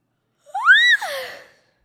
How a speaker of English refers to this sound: You realize that when you make that noise, that high pitch, that's what they hear? Please get back in front of your microphone. I was yawning.